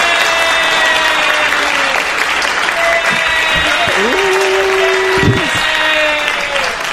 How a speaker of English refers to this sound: Hey, guess what? Applause!